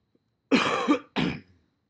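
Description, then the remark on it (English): Two harsh coughs in quick succession, the first longer and rougher, heard clearly with no talking; a small cough from the change in seasons. “I've got a little bit of a cough.”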